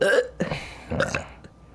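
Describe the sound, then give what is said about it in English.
A loud, natural, unforced burp, rough and croaky, breaking into a few gurgling pulses over under two seconds before trailing off into quiet. “I just out-burped you.”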